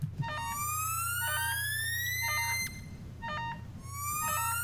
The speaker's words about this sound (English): That alarm sounds bad. It sounds like something bad's happening.